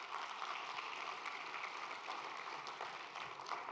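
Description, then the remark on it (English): A church audience claps together in steady, sustained applause of praise and welcome for the online audience, a dense rustle of many hands with no clear rhythm, holding at a fairly soft, even level throughout with no voices standing out. “Before we go on, can we take a minute and just give a hand clap of praise and of welcome to our online audience, to our online church?”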